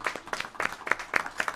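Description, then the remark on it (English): A short burst of audience applause for APIA, hosts of a City Council candidate event, with distinct, fairly regular claps coming several times a second at moderate volume and no voices over it. “Let's give them a round of applause first.”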